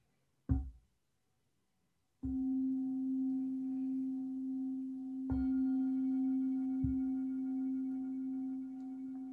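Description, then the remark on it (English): A meditation bell struck several times: a brief first tap, then strikes whose low, steady tones ring on with bright overtones, layering as the bell sounds again. No voices. “And you can continue to focus on your breath and your body and just keep bringing yourself ease as you listen to the bell and the chant.”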